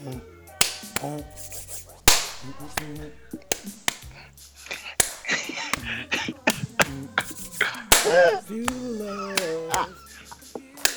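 Sharp hand claps strike out a steady, punchy beat across the whole stretch, loud and crisp, with voices and sung or hummed tones mixed in between the hits.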